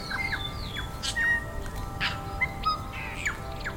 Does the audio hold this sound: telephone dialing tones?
no